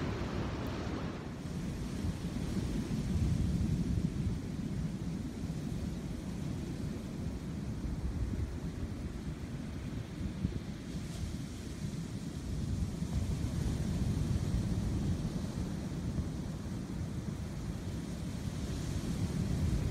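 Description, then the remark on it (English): Ocean surf rumbles continuously on a beach, a steady, full roar of breaking waves with some wind buffeting the microphone and no voices. “They love the ocean.”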